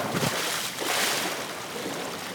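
A person splashes into the water outdoors, a broad wash of rushing water swelling mid-clip against steady background surf and wind, with no one talking.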